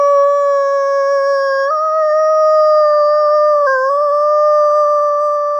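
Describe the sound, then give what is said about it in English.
A person imitates an American wolf howl, answering a Mexican wolf howl in a call-and-response to get wolves to join in: one long, steady, fairly high-pitched wail with a coyote-like yip, held loudly for several seconds, with a couple of slight pitch shifts partway through. “echoes back with an American wolf howl. It has a higher pitched yip, similar to that of a coyote.”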